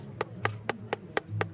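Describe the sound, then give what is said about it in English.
A tinsmith hammers metal while working on a large mug, demonstrating to a crowd at an outdoor event, in six quick, evenly spaced taps, each a sharp ringing clink. The strikes are moderately loud, with a faint low hum underneath and no voices. “Another man demonstrating and drawing a big crowd. He's tinsmithing.”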